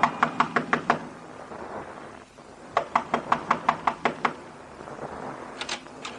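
Several bursts of quick, sharp knocks on a door, each run of five or six raps separated by short pauses, fairly loud over a quiet hum. No one speaks.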